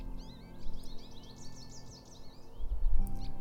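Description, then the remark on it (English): A male and a female American goldfinch, perched on low-hanging branches of a red oak by a small wetland, chirp in a quick run of bright, twittering notes over a low outdoor hum, followed by a brief rumbling thump near the end. “It's a male and female American goldfinch.”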